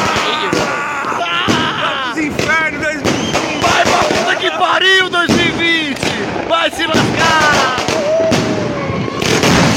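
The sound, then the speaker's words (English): Firework mortars from a box that tipped over on its side shoot at people at a party in Central LA, bursting in a rapid, irregular barrage of loud bangs, one after another, while people shout and scream over the chaotic explosions. “It looks like they had a box of mortars that tipped over on its side and started shooting at everybody.”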